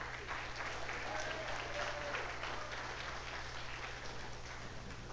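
Steady applause from an audience, another round for a performer, fills the space, a dense patter of many hands clapping at an even level for several seconds without letting up.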